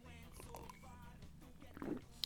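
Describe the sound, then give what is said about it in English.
A quiet slurping sip of herbal tea from an old army mug, followed by a soft swallow and a small click of the lips, with faint mouth noises around it, in a village in northwest Bosnia and Herzegovina. “It's herbal tea. Smells very nice, and I'm going to have a sip.”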